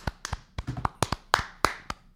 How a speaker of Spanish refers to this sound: Gracias por Bukele. Un aplauso para Bukele. ¡Bukele!